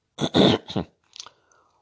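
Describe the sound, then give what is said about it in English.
A raspy throat clearing by a person with a chronic sore throat, in two or three harsh bursts, followed by a softer rough noise and a faint breath, with no talking. “Now, podcasts are something new to me, and hopefully I'll get better and not have any of these pauses and clear my throat.”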